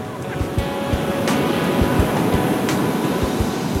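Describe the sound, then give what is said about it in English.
Steady roar of wind and surf at a beach in Santa Cruz, California, on a brisk, windy day, with repeated low rumbling gusts buffeting the microphone throughout. No one speaks. “I'm at a beautiful beach in Santa Cruz, California. It's not exactly a warm day, it's a brisk, windy day.”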